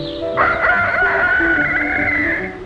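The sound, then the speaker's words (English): A white leghorn rooster lets out a single long, loud crow, one drawn-out call lasting a couple of seconds with no voices around it. “The chickens jump and fly from their roosts. First the rooster, and then the hens. They are white leghorn chickens, wide awake now, and waiting for breakfast.”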